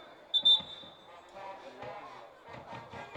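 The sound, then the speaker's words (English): A referee's whistle stops a football game between the Randolph County Tigers and Handley, giving one short, shrill, high-pitched blast, loud above a steady crowd murmur that carries on afterward with low thumping sounds and indistinct voices. “like I said, we got a whistle here”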